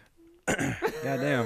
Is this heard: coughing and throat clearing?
yes